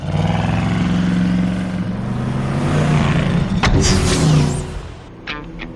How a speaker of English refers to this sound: That car is sensitive. I mean, $4,000 just drove off.